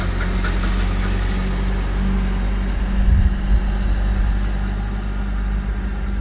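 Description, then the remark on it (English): A truck rumbles by, its deep engine drone steady throughout and swelling slightly midway as it passes. No one speaks. “So if I were to do that and I needed to get somewhere quickly, let's have this truck pass by real quick first.”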